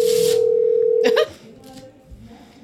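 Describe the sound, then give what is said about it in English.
A loud, steady phone dialing tone holds a single pitch for just over a second, then cuts off abruptly, leaving quieter background voices murmuring. “Let's just call him.”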